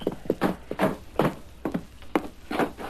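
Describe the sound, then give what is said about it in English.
Steady footsteps, about seven or eight heavy thudding steps at an even walking pace, fairly loud, as a man comes in through the back door of the Blue Star after dark. No one speaks. “One stayed outside, the other entered through the back door.”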